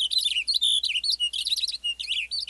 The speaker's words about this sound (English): A western bluebird flits from a gnarly branch as a Cassin's finch belts out a rapid song.